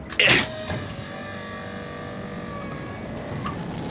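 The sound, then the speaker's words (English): A spacecraft's lower bay doors opening: a short, loud clunk, then a steady mechanical whirring hum with faint tonal whine that slowly drifts lower and holds for several seconds. No one speaks. “Opening lower bay doors now.”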